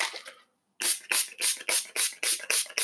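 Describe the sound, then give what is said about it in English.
A facial rose petal mist spray bottle is spritzed onto a face in a quick, steady run of about seven hissy pumps, each a sharp burst of mist, with no talking. “Let me spray some facial Miss Rose Petal on my face real quick.”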